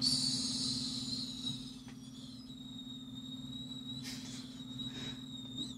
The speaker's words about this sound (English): You got that Herbert the Pervert whistle going?